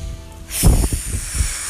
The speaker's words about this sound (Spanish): No a las cuatro, pero vamos a tomar la respiración que más me gustó, que fue la primera. Inhalas por la nariz, botas por la boca con fuerza.